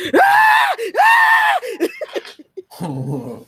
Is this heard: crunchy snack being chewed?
no